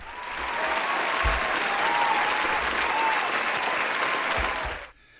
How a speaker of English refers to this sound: That was a round of applause for this show.